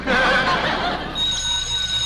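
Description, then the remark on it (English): After a brief burst of noisy, rustling sound, a telephone rings with a steady, high, metallic bell tone that continues to the end. “Well, it's the phone.”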